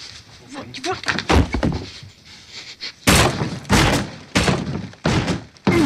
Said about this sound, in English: That's him punching a hole through the wall. I remember. That scared me a little.